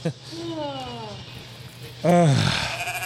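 Two sheep bleats: a wavering, mid-pitched bleat at the start, then after a short pause a louder bleat that slides downward in pitch, with a faint hiss in the background.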